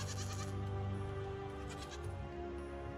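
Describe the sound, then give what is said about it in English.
A goat bleats in a long, wavering, nasal cry that fills the whole moment, loud, with no voices alongside it. “Goat is the second. That's the one you milk.”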